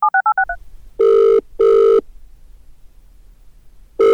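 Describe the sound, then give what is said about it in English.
A quick run of about six keypad dialing beeps, followed by a loud double ringing tone through a phone line, a pause, then the ringing starts again. No one speaks. “I got the number. Maybe just give him a dial.”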